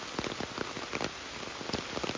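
Steady rain patters on a hard surface, a dense hiss of irregular drops with scattered louder splats, continuous throughout and with no voices.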